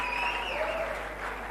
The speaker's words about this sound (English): Come on, put your hands together for the Lord Jesus. Come on, this is wonderful.